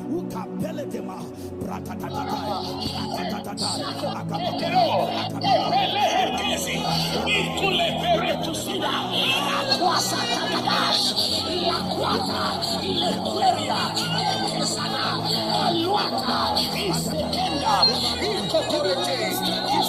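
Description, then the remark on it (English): A large audience prays aloud together in a steady, dense babble of voices, with occasional louder shouts rising above the crowd throughout. “Somebody clap your hands and begin to pray.”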